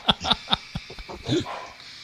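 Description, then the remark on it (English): A small Lagotto Romagnolo dog barks several times in quick succession, sharp yips, followed by a softer whining bark trailing off. “Caused my dog to bark.”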